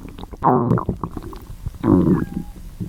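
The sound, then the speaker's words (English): A stomach rumbles and gurgles loudly from gas cramps, with two long, bubbling growls about a second and a half apart and smaller squelching gurgles in between; no one speaks. “Yeah, he's going to have really bad gas cramps.”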